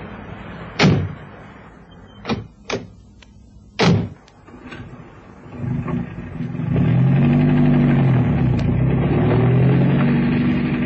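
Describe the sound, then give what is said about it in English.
A few sharp car door slams, then a car engine starts up and drives off on a road that is one sheet of ice in bitter cold. Its low, steady rumble grows loud and continues to the end with no talking. “Careful driving, Cannon. The road's one sheet of ice.”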